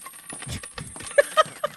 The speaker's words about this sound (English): Feel free to talk over that. It's going to happen a lot. Okay. This is just going to be the podcast of listening to fake coins hit a fake change. Counter.